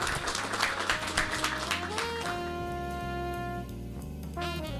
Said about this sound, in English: With that, we'll go ahead and wrap up here. Please give Riley Moore a round of applause. Thank you.